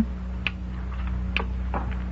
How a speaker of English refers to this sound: Behind these boxes, somewhere about here. Sounds like a little clock.